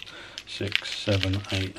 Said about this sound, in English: So what I'm doing is I'm pre-packing. So I'll count the pens out.